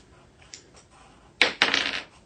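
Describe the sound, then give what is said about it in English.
Dice clatter across a hard tabletop: a faint tap, then a loud rattle with several quick bounces that tumbles for about a second before settling. No one speaks. “Yeah, you don't even want to know what number came up on that dice because it's very low.”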